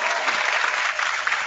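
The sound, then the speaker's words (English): A studio audience applause sound effect: steady applause from a crowd fills the whole moment, a dense wash of many hands clapping at a consistent, fairly loud level with no voices standing out. “There's the applause. The studio audience is back.”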